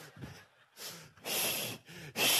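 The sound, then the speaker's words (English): Heavy, ragged breathing with sharp gasps from chasing after someone on foot: about five loud breaths in quick succession, growing harsher and louder toward the end, with no talking. “Anybody try to chase somebody, and all of a sudden, I'm breathing hard.”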